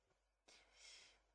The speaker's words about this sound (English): I keep yawning. You're tired?